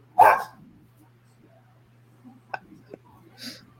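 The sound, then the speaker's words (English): A dog gives one loud, sharp bark, followed by a few softer, clipped yips and a fainter bark at the end, over a low steady hum. “The dog won't shut up.”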